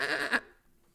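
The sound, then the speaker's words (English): A person imitates a goat with a short, nasal bleat lasting under half a second, loud, then it cuts off into near silence. “That's a good one, man. Dude, I'm a good goat guy, dude. That was good.”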